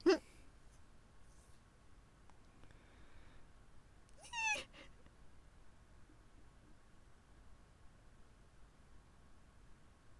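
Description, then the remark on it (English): A cat meows twice, a sharp cry at the start and a longer, wavering meow a few seconds later, with faint hiss and quiet background in between. “They moved from the cat is squashed to the cat is alive again in literally 10 seconds.”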